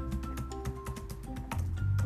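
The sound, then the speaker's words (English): Rapid keyboard typing as a name is typed in, a quick irregular run of light clicking keystrokes over a steady low hum, with no voices. “Oh my God, I'm typing this in.”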